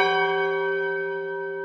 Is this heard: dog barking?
no